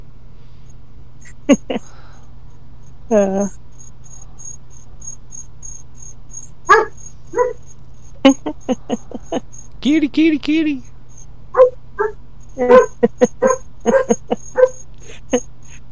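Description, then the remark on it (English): A small poodle named Lenny gives scattered short barks and high whimpers, fairly loud, over a steady chirring of crickets, while a person briefly calls out in between. “He's the most airheaded dog I think I've ever met.”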